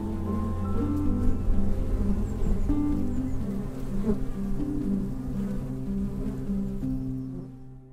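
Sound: bees buzzing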